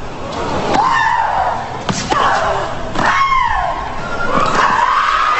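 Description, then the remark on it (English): Loud, drawn-out shrieks from female tennis players Maria Sharapova and Serena Williams, several in a row, each bursting out with a sharp racket strike as a rally goes back and forth, with crowd and court noise underneath. “This is just an example of what some of the noises can be like.”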